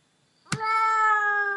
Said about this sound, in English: What are you doing to that cat to make it make that noise? She makes a noise.